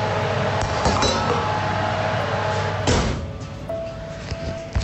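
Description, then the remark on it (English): A loaf of bread, baked for 20 minutes, is lifted out of the oven: a few sharp metallic clinks and clatters of a tin or tray over a steady, loud whooshing hum, with no voices. “The bread's had 20 minutes, so it's looking, let me just open the door. Oh yeah, that's looking great. Just taking it out.”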